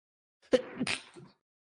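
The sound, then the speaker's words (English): A single sharp sneeze bursts out, a quick intake followed by an explosive, breathy release that trails off in about a second. “Bless you. That was the act of God.”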